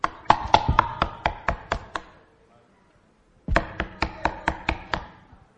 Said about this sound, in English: And he came up to the door, put his bag down, and started knocking.